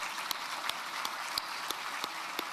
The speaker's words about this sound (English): Yeah, we can applaud for that.